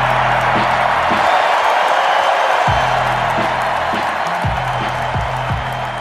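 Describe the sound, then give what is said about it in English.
A sold-out arena crowd in Portland roars continuously at the player introductions as Damian Lillard is introduced, a dense wash of cheering and shouting that stays loud throughout, with low rumbling bursts of noise underneath that come and go. “Sold out crowd at introductions.”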